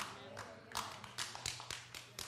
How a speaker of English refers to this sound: Thank you, one of you. You know why? You know why? No one else clapped? Because we all feel guilty because we know we don't pray very often.